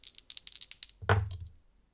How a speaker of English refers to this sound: That sounds like a brains roll to me, where your ability helps. So, 2 dice.